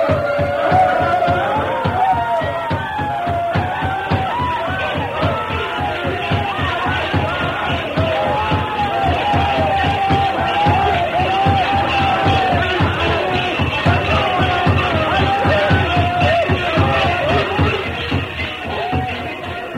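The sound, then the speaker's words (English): A crowd dances, chants and shouts continuously at night in a loud, frenzied din, with rhythmic stamping thumps pulsing underneath throughout. “While they danced and shouted, working themselves into a frenzy, he slipped away unnoticed and joined the masked man.”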